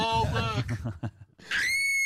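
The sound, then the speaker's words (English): Strained, wailing vocal sounds give way to a woman's piercing scream that rises sharply and holds at a shrill, steady pitch, loud. “I just love the female screaming.”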